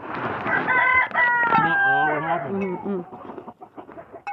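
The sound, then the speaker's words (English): A gray rooster lets out a long, loud crow, its drawn-out call rising and then falling, followed by several shorter clucking and squawking calls from other chickens going after it. “They're going after the gray rooster.”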